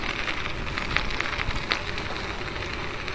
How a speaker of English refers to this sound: It's 42 degrees and rainy here in the Boise River Valley.